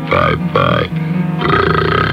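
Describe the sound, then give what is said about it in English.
A loud, drawn-out belch lasting about two seconds, its croaking pitch wavering and breaking partway through, with nothing else around it. “No shame, no guilt, no more tummy rumbling, smelly belches, no more stopping in mid-sentence to uncork a big cheesy blaster.”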